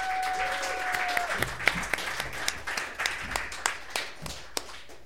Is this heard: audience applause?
yes